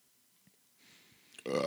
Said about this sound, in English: Whoa, excuse me. Burp.